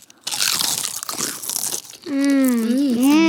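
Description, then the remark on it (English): Loud crunching of a salted potato chip being bitten and chewed for nearly two seconds, followed by a drawn-out hummed vocal sound with a wavering pitch. “That is what a potato chip is supposed to taste like.”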